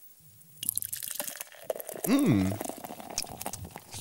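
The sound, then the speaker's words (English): Beer is poured for a tasting, splashing with a soft, crackling fizz of foam, broken by brief drips, while a voice hums and murmurs briefly over the pouring. “You can hear the foam in that.”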